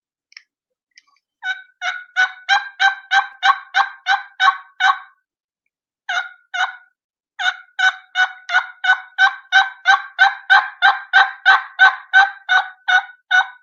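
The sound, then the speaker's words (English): A turkey call imitates a hen's front end yelp: a brief opening note, then a long, steady run of clean, high-pitched yelps with almost no rasp, a pause, and another extended series, loud with no talking. “This is a front end yelp, almost no rasp.”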